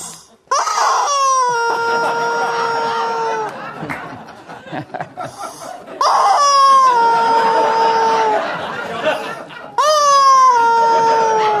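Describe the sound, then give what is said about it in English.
A screaming rubber chicken toy, presented as the award of the first annual Greg Gutfeld Outrage Awards, shrieks loudly three times, each squeeze a long, wailing, harmonic screech that slides down in pitch, with chatter and laughter in the gaps between squawks. “So we present to you the first annual Greg Gutfeld Outrage Awards, in which this screaming chicken is the actual award.”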